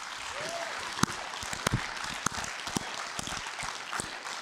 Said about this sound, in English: Round of applause, everybody.